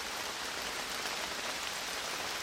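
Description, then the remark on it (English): Steady morning rain falls in a quarry with a dense, even hiss of drops spattering on hard surfaces, continuous and moderately loud with no voices or other sounds. “It was me, the microphones, and the morning quarry rain.”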